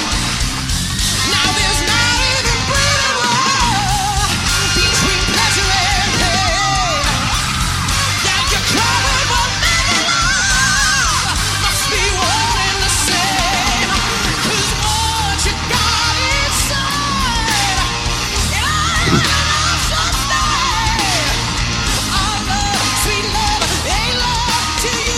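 A male singer screeches and wails loudly over a full rock band backing, his strained high voice sliding and yelling continuously through a slow, heavy ballad.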